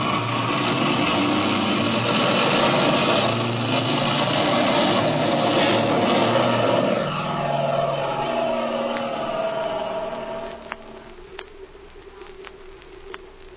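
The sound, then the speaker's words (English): A propeller airplane off to the west drones loudly and steadily with a rough, buzzing roar, then fades away after about ten seconds, leaving a few faint clicks and crackles. “Mother, look, I think that's Jimmy's airplane, off to the west there, see?”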